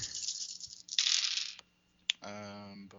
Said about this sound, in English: Let me get some dice and roll them. Let me acquire dice and roll them in a fashion that this game mechanic demands.